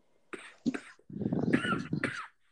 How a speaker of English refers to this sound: Excuse me. Sorry, I got a cough still.